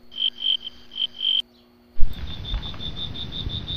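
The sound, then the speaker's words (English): Crickets chirp in steady, rapid pulses, first alone and then briefly cut off before resuming over a louder wash of outdoor night ambience. “Yeah, crickets”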